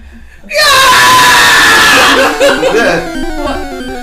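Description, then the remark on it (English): After a moment of quiet, a loud, sustained yell from inside a room, answering a knock on the door, bursts out and holds for about two seconds, then breaks into choppy, cackling vocal sounds that trail off. “Your knock on the door is answered by a yell from inside.”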